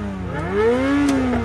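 A sports car engine revs up, its tone climbing and then holding at a steady high whine, loud with no voices over it.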